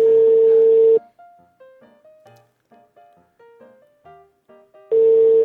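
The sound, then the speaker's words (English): A telephone ringback tone drones for about a second on an outgoing call to Bangladesh, then a quick run of short electronic beeps at shifting pitches plays before the steady ringing tone returns. No one speaks. “It just stopped ringing. Oh, we're gonna ring again.”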